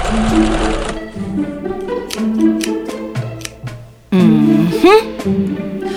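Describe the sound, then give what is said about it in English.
A sewing machine used for making costumes runs fast and frantic, its needle clattering in rapid bursts with a whirring motor, fairly loud, pausing briefly before surging again. “Maxlock and Linkson somehow waddled over to a frantic-sounding sewing machine”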